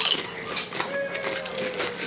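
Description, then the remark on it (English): Crisp, crackly crunching of baked cheese chips, a steady run of sharp brittle snaps and rustles for about two seconds, with no talking over it. “They're baked cheese. I'm doing all the sound baked effects.”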